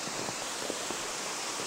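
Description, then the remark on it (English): A waterfall with quite a lot of ice on it rushes below as a steady, unbroken hiss of falling water, fairly soft and even throughout, with no voices and only faint flickers of splashing texture. “I don't know if you can hear, there's a waterfall just below me now.”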